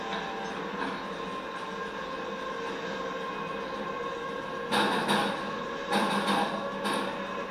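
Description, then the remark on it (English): Several short bursts of gas hissing from a sprayer, roughly three in quick succession near the end, rising over a steady background rumble and hiss. No one speaks. “You don't have to stand right in the spray.”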